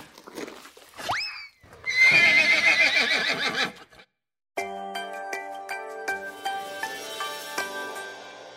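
A horse lets out a loud whinny that rises sharply, then shakes and trails off for a couple of seconds. After a brief silence, bright ringing chime tones follow.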